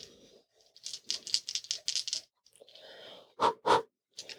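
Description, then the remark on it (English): A quick flurry of hard clicks and rattles as dice are rolled for a stealth check and tumble across a surface, followed by a pause, then two louder sharp clacks as they settle. No voices. “Roll stealth.”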